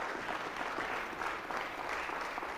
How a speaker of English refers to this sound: Can somebody clap their hands and thank God for the blood? Thank God for his blood.